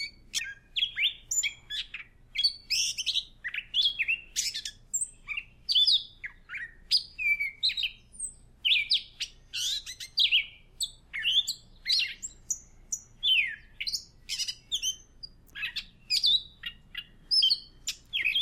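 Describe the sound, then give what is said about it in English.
A gray catbird sings a long, rambling song of squeaky, scratchy notes and liquid warbles, delivered in quick, varied phrases with brief pauses, clear with no talking. “The song of the catbird is a rich mix of squeaks, warbles, and notes that they imitate from other birds around them.”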